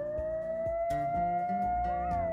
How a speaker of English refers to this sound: "Are those coyotes?" asked Ella May. "Yes, I think so. But we'll be safe here on this island. They shouldn't be able to get to us," said Creed.